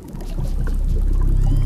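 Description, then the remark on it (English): Killer whales hunting in Norway whistle and click underwater, the thin rising whistles and scattered clicks sitting faintly over a steady, loud wash of low rumbling water noise. No one speaks. “These are the whistles and clicks of killer whales hunting in Norway.”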